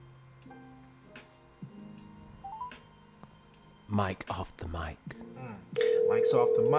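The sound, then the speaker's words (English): Phone dialing tones as a phone call is placed: a string of soft keypad beeps and steady tones plays alone for a few seconds, then voices talk over it as a sustained tone hums underneath. “All right, we're going to call ….”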